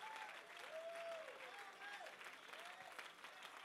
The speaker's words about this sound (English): Oh, if you believe it, clap your hands.